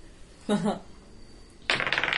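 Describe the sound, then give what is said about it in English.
Dice rolled to hit in a game clatter on a hard tabletop: a short rattling burst, a pause, then a longer bright clatter of quick ticks as they tumble and settle. “Ooh, this dice is doing so good.”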